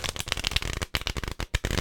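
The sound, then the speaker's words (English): Steady riffle shuffle of a standard deck of cards from the game Jaipur: a dense burst of rapid flapping clicks as the cards interleave, with brief pauses, and no one talking. “So that was a standard shuffle. It was a riffle shuffle.”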